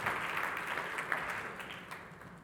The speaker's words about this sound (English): The worship team, just give Megan and the worship team a wonderful hand clap. Praise God.